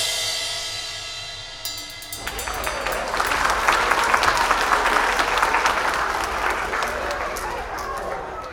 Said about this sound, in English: Thanks for sticking with us through the break, and another round of applause for our last guest, the brilliant Mr. Joseph McCarthy.